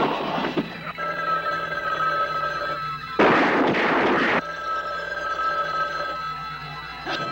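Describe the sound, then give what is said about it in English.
A telephone rings with a sustained, bright bell tone, broken midway by a loud burst of rushing noise, then ringing again until the end. No one speaks. “Don't answer the phone.”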